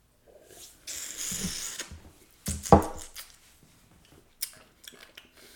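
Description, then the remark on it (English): Four metal drink cans scrape and clatter as they are shuffled around on a hard tabletop before being ranked, with a louder knock midway and a few lighter taps afterward, fairly quiet. “Just shuffle the cans. Just reach over and shuffle.”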